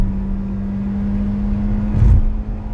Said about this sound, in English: I'm actually not in a mood, but this jack-off is going so slow and everyone's speeding around me now that I can't even get around him. It's a goddamn freeway!